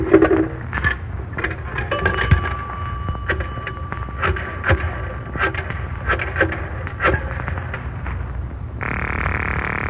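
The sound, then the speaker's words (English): A pay telephone with no booth, in an office, is used with a nickel to call the police: a run of sharp mechanical clicks and clatters, as if a coin dropping and a dial turning, with a thin steady tone, then a buzzing line tone at the end. “Give me a nickel, Mary. Yes, Miss Roberts. The phone's right there.”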